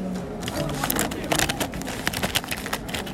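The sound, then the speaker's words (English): Busy rummaging through a pencil case: a continuous jumble of small clicks, taps and plastic rattles as items are shifted around, fairly steady with a few sharper knocks. “That's me rubbaging through Megan's pencil case.”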